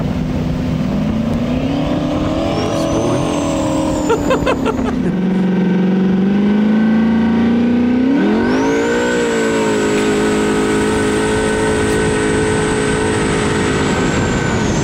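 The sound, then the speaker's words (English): A car engine revs hard, its pitch dipping and then climbing, while a thin high turbo whistle rises and holds steadily over the roar for the rest of the run. “here's the sweet, sweet sounds of that bad boy.”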